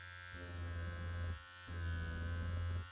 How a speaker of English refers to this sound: Yeah, that's probably not good for the mic or the shaver.